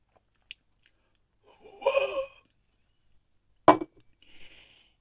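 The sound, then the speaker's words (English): A fairly quiet slurping sip of 15-year-old Glenfiddich whisky from a glass, followed by a sharp clink as the glass is set down and a soft exhale afterward, with no talking. “I want to briefly start by taking a large sip of this 15-year-old Glenfiddich I have.”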